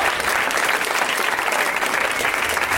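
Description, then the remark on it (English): Steady, loud audience applause on a show welcoming guests Tom Lennon, Steve Agee and Alia Shawkat, a dense wash of many hands clapping without pause or buildup, with no voices standing out. “Way to milk the applause.”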